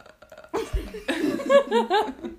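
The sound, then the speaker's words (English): A voice imitates a straw slurping the dregs of a drink: a low rattling burst, then a string of bubbly, wobbling sputters that bend up and down in pitch, fairly loud, about two seconds. “Or like a straw at the end when there is too little liquid and you're like”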